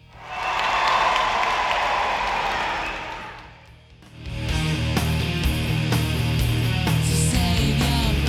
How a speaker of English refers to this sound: Homer raises his arms in victory, and the crowd cheers.